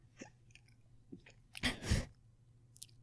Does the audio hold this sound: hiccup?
yes